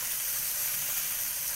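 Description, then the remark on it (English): Chicken sizzles steadily in a hot pan, a continuous bright crackle and hiss of frying with no voices, holding an even level throughout. “But like, just brown it up, and then add the rest of the chicken, and then take that chicken out once it's all browned, and then add the rest of the chicken”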